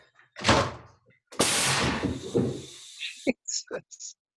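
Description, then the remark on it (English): A sharp, loud blast as an air cannon fires a baseball at 95 miles per hour into the forehead of a catcher's helmet, followed by a long rushing hiss of released air and a few short, dull knocks. “I've got it targeted basically at the forehead of the catcher's helmet, and we'll pull this back.”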